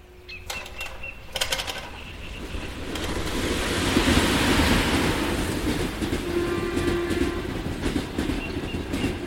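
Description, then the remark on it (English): A train rumbles steadily along the tracks with rhythmic clickety-clack wheel sounds, starting with a few sharp clanks and building into a loud, sustained roar. No one speaks. “And the ghostly train appears on the tracks.”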